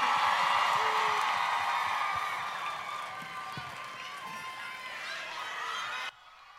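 A large audience applauds and cheers in a dense, steady roar of clapping and shouts, loudest at the start, easing a little, then cutting off abruptly near the end.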